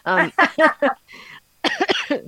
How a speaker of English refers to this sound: sorry. It's making me cough.